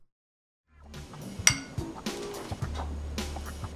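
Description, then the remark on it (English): A pour of Perrier sparkling water into a glass: a sharp clink of glass, then a steady gurgling stream with crackling, hissing bubbles that continues for a few seconds. “Did I get you in the mood for Perrier? Yeah. You should have pour against the wall of the glass.”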